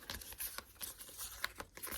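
Quiet riffling and flicking of tarot cards being shuffled, a run of soft papery slaps and rustles in quick irregular bursts over about two seconds, with no voices.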